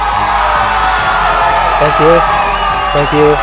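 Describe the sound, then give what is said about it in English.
An audience applauds and cheers in a steady, dense wash of clapping, with excited voices and a couple of brief rising whoops breaking out above the noise toward the end. “Such a great applause for that.”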